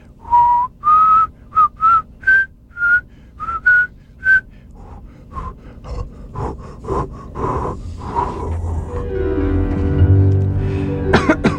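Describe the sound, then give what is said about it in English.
A short run of clear, rising whistled notes from a recording artist performing live in Times Square, New York, to welcome in the year 2000 breaks down into breathy, sputtering puffs and coughs, ending in a raspy, strained blowing sound, fairly loud with no talking. “As far as I can tell, it was the champagne. I was never able to whistle again.”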